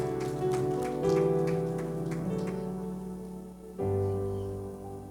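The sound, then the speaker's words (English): Rhythmic hand clapping from a seated audience at a church service, steady beats over sustained organ or keyboard chords; the claps fade out after a couple of seconds while the music continues and shifts to a lower chord. “Why don't you clap your hands as you're seated?”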